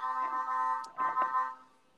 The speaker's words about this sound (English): What the fuck is that? Oh, I guess it's a fucking truck outside. It's my ride. To pick you up. What the fuck? No, that isn't fucking me. I'm pretty sure that's like the fucking Korean barbecue supply truck or whatever.